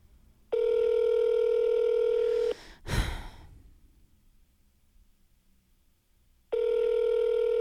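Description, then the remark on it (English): A phone line rings out unanswered, a steady electronic ringback tone sounding twice with a long silent gap between, broken once by a sharp breath. “He's not going to answer.”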